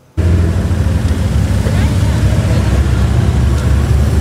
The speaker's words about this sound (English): More than 100 cars rolled out of Langford this morning for the annual fundraising event. The ride takes drivers to Port Renfrew and back in honor of fallen Constable Sarah Beckett.